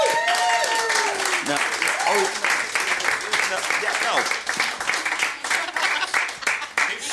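crowd, audience applause

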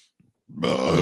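human body sound, burp

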